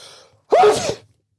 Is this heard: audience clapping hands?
no